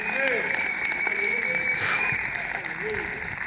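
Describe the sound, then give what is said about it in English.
A loud, shrill whistle from the audience holds one steady high pitch for about two seconds over applause and crowd noise, then cuts off while the clapping and cheering voices continue. “Whoever was whistling that loud, wow. That's a whistle.”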